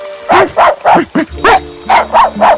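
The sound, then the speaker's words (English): A small dog, being played with near a fountain, barks in a quick series of about eight sharp, high-pitched yaps, with a brief pause midway through; no one speaks. “The princess spent the day near the fountain trying to distract her mind by playing with the little dog.”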